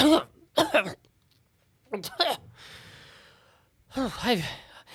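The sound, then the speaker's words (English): A woman walking away suddenly coughs in several loud, harsh bursts close together, followed by a long breathy exhale and another strained, voiced round of coughing. “Margaret begins to walk away and suddenly begins to cough quite loudly”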